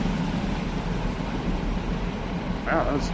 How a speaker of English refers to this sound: It's a train going by